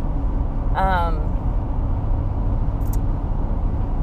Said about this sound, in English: Wow. It is so windy today. My car is just like being pushed all over the road.